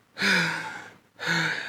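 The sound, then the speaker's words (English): Two harsh, heavy breaths in quick succession, loud, each a raspy, breathy gasp with a slight voiced edge, from a man hunched over in a chamber, panting from exhaustion. “hunched over and breathing harshly.”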